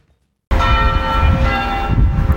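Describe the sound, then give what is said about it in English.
After a brief silence, bells ring out loudly at a local park in central Bendigo as residents gather under shady trees: a rich, sustained clang of overlapping tones with heavy low rumble, continuing steadily without any voices. “At a local park in central Bendigo, bells ring out as residents from all backgrounds gather in this shared space under the shady trees.”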